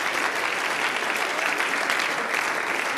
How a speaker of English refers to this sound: Come on, let's stand and clap our hands right now and give the Lord some praise in this house.